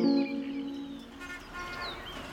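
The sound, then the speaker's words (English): Birdsong with bright, rapid chirps and trills rising over a steady low tonal hum that fades after the first moment, moderately loud with no voices. “Birdsong may be music to our ears, but we live in a world where it is harder and harder to hear it.”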